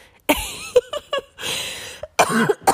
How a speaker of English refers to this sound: Sorry, guys, I'm having cough. But I hope you can hear me.